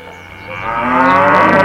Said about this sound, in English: I really don't think we need that much mooing.